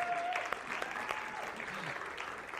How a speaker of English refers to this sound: I know you're Canadian, you know, it's a little ripple of applause is quite good.